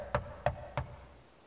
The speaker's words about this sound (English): Yeah, I think June has a look of apprehension, but they, slowly approach the front door and they go to give it a knock.